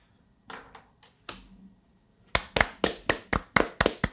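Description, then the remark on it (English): A few scattered hand claps start things off, then a quicker, louder run of about eight sharp claps follows in a steady rhythm, with no talking. “So I would like claps for that.”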